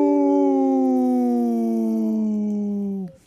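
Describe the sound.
Two people on Native Roots Radio imitate a wolf howl for a Howling for Wolves message, with one long, loud wail that holds steady, slowly sinks in pitch over about three seconds, then cuts off abruptly.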